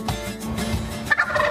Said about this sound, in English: That's right, I said it, America's favorite bird, the wild turkey.